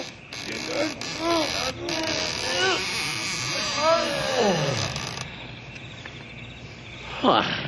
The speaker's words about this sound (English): Now help me open up these big doors.